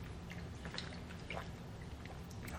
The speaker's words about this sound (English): Let me take a swig of water really quick.